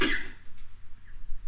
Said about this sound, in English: because he keeps coughing into the microphone.